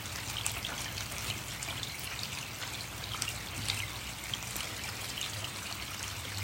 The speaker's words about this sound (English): Feel the sound of the rain touching into every single cell of your body. Feel the sound of the rain caressing every level of your consciousness.